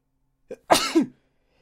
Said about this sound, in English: Oh, hold on, I'm about to sneeze.